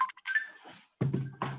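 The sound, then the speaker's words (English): A phone sounds off with short electronic tones as a caller chimes in, a few quick beeps followed by a longer steady pitch, then a buzzing, humming burst, moderately loud. “You in this phone, man. I thought you was turning that mud off.”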